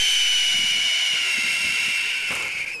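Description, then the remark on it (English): A single long hawk screech, high-pitched and raspy, holding steady for nearly three seconds before dipping slightly at the end. It is loud and alone, with no talking. “Like, it's the I guess it's the best onomatopoeia she could put in. Because birds are hard. Chris, put the sound in.”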